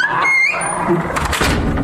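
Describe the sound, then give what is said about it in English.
A door squeals on its hinges with a rising, high-pitched creak, then swings shut with a dull thunk and a brief rattle, fairly loud and with no voices. “Can you get the door, please?”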